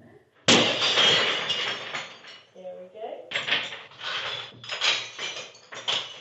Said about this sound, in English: And believe it or not, it took 7 attempts with a sledgehammer to get through a pane of the famously breakable material glass. But eventually.